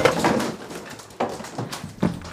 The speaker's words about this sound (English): you threw a chair at me! You're destroying your house! You're destroying everything!